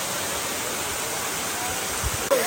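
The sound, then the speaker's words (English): A steady, full-bodied roar of rushing water from a waterfall fills the scene, constant, with a brief bump near the end, as a team gets down at the waterfall for a team picture, the very cold water pounding them. “here's a waterfall and they got down there for a team picture.”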